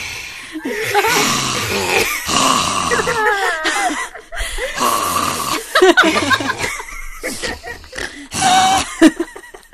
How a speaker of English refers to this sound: she wakes up the next day to the sound of breathing at her bedside. And she pulls back the curtain and it's him, Monsieur le Maire.